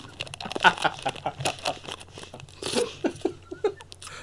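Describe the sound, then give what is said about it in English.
Wet chewing and biting on a stiff bookmark, with irregular crunchy, crinkly bursts repeating over a few seconds, mixed with faint breathy vocal sounds and no clear speech. “Now I'm gonna chew on the bookmark.”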